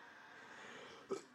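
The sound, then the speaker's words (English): A single short, fairly soft cough breaks a quiet stretch of low background hiss, followed moments later by a brief sharp click. “Sorry about all the coughing.”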